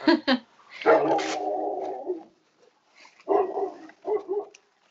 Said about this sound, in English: And I think that dog in the background agrees.